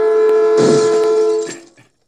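A train derailing crash sound effect: a steady, blaring horn tone sounds throughout as a loud burst of smashing, grinding metal erupts, then everything fades quickly into silence.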